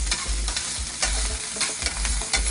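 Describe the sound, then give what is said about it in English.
Food sizzles and crackles steadily in a hot oiled pan as a little more oil is added, a dense hiss broken by sharp pops and spatters because oil and water don't mix, with a low scraping rumble as it's stirred. No one speaks. “It's gonna pop and splash because oil and water don't mix, don't get excited.”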